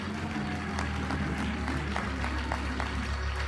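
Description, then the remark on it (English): A church audience at a morning service claps their hands unto the Lord in a steady, dense wash of handclaps, with a low sustained tone humming underneath and no one speaking. “Now, if you really believe in that prayer, I want you to clap your hands unto the Lord this morning.”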